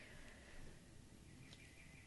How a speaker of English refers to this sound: We have our birds chirping for us.